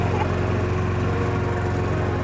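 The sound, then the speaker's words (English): A steady, droning engine exhaust noise recorded with the microphone held close to the exhaust, with a low, even rumble and a faint hiss above it, holding constant and fairly loud for the whole stretch with no talking. “Let me hold the mic closer to the exhaust.”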